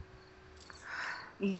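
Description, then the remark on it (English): Faint crickets chirp steadily, a thin, continuous trill coming in through open windows, with a brief low voice sound near the end. “And I hear crickets.”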